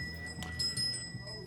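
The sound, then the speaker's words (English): A bell rings with a steady, bright, high-pitched tone, its shimmering overtones sustained throughout, over a low murmuring background with a few soft bumps. “So there's a bell.”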